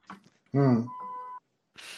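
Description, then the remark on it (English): A loud, brassy honk, the sound of a missile being launched, blares for under a second and settles into a steady, held electronic tone. Brief muffled sounds come before it, and a burst of hiss follows. “The honking is the sound of the missile that Elroy just launched.”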